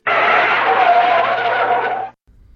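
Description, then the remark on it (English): A car-brake screech sound effect: a loud, sustained screech lasting about two seconds with a harsh, high squeal, then cutting off abruptly into near silence. No one speaks. “As you heard, this is where we put the brakes in the conversation.”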